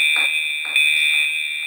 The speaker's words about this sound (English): Suddenly, there's an alarm going off.